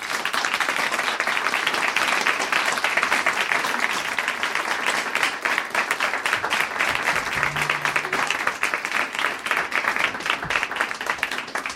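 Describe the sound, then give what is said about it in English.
Sustained applause from an audience for two television writers, a dense steady wash of many hands clapping at a consistently loud level for about twelve seconds, with no speech over it. “Please give a round of applause to television writers Paul Grelong and Jessica Goldstein.”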